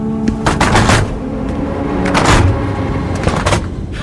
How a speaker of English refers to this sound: What was that? They're closing the door, that's all. Hatch, whatever they call it.